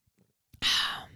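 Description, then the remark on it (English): A few faint clicks, then an airy slurp of someone sipping coffee, trailing off into a breathy exhale. No talking. “I got to take a sip of my coffee.”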